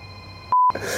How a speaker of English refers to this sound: Day 43 of the phone ringing.